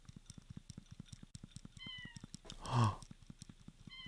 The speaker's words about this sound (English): Okay, now we're going to try. For the cat. Let's see if we can hear the cat.